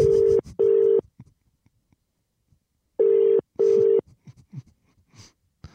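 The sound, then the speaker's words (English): A phone line tone as a call is transferred to a manager at Luna Park in Sydney: two loud double-pulse electronic tones, each pair of short buzzing beeps separated by a couple of seconds of quiet, with faint clicks between. “Let me just transfer you.”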